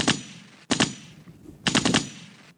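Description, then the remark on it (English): Three rapid bursts of loud automatic gunfire, each a quick stutter of sharp cracks separated by brief pauses, with no voices present. “At all costs, like ASAP, gunshots fired, whatever you feel about it.”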